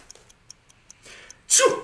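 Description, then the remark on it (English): A run of light, regular ticks gives way to a soft indrawn breath and then one loud sneeze, a voice imitating a sneezing panda with a sharp hissing burst at the end. “Sneezing panda.”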